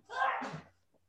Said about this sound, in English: What was that? Bless you, whoever that was. Somebody just sneezed in the background.